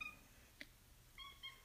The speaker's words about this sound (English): Puck, this isn't about you. Sorry, this is my cat.